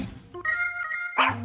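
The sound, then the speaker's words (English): The speaker's dogs bark in a short, yappy burst, a couple of quick high-pitched barks ending in a sharper yelp, with no talking. “And my dogs really want you to pledge.”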